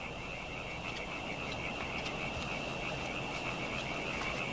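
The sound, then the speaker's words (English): A dense chorus of frogs croaking steadily at night, with a constant high trilling band and scattered calls overlapping throughout, like a pond alive with many frogs. “What's that noise? Frogs.”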